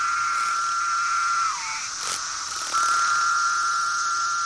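cicadas buzzing

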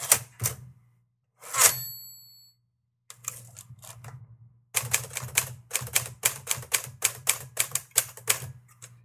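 typewriter keys typing

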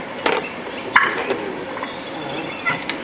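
wild turkey hens calling

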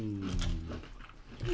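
dog making noise

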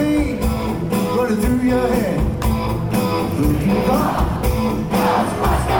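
crowd cheering

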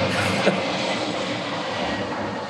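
airplane flying overhead

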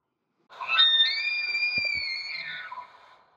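elk bugle call

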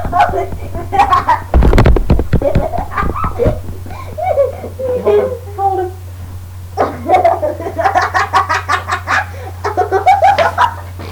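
birds chirping

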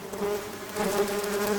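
bees buzzing

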